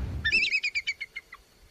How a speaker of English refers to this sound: When bald eagles screech, they sound so silly that Hollywood has to dub over that sound with a red-tailed hawk's cry.